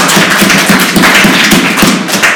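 A round of applause: dense, steady clapping from many hands with no clear individual beats, holding at a loud, even level for a couple of seconds with no talking.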